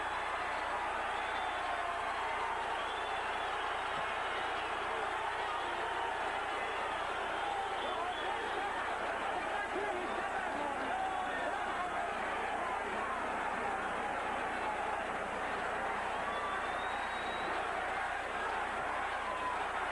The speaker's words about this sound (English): The crowd chanting Sugar Ray. We will let you watch the last minute of a great evening in Las Vegas.